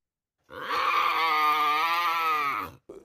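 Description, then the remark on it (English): A confiscated tiger cub, in a video that went viral online, lets out one loud, drawn-out grunting growl, raspy, holding steady for about two seconds before trailing off, followed by a brief huff. “So the confiscated tiger cub, there's a video that went viral online of the little tiger cub.”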